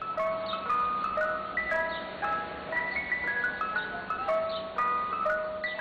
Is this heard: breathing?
no